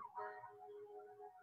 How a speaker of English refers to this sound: You hear the ambulance? It's because it's something we can't forget.